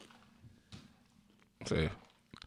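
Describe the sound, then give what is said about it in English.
Someone chews food right up against the microphone: soft wet clicks, then a loud, crunchy burst of munching lasting about half a second before a few smaller bites. “Man, you know, when you munch on the mic, it's bad, fam.”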